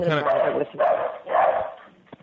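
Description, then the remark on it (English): A female mixed-breed dog, a mutt of Beagle, Dachshund, Terrier and maybe German Shepherd, barks three times in quick succession, loud, each bark drawn out with a slightly whiny, yelping edge before a brief quiet tail. “She is Beagle, Dachshund, Terrier, who knows what, maybe German Shepherd. She's a mutt.”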